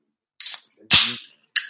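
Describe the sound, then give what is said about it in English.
A can of lime hard seltzer cracks open with a sharp pop and a burst of fizzing hiss, framed by a couple of other short hissy bursts, with no talking. “Let's crack open the lime, I guess.”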